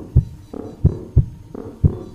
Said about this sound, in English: 60 beats every 60 seconds. The rhythm of a sleeping heartbeat.